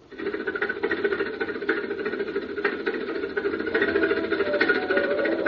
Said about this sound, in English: Glad we got the engine. That slab weighs about 70 tons.